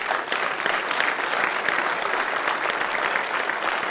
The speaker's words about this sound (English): Give God a big hand clap tonight.